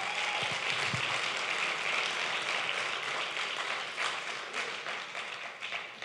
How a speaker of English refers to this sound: Can we give everyone a round of applause in this place?